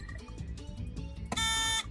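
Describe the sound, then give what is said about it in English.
A loud, harsh game show buzzer blares in one sustained burst of about half a second, cutting in over soft background music that plays beforehand, during a Legend of Zelda trivia question. “Take a guess. Before the buzzer.”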